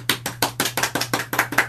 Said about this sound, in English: Ever wonder what the sound of the smallest audience is like clapping? That sounded to me like a lot of Smurfs in an orgy situation.